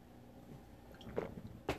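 Quiet mouth sounds of someone sipping and swallowing water, with two brief wet gulps near the end and no talking.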